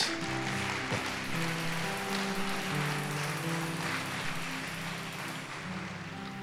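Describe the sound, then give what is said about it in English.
A crowd claps for Jesus in a dense, steady wash of applause that lasts the whole stretch, with sustained low keyboard-like tones humming underneath. “Clap for Jesus.”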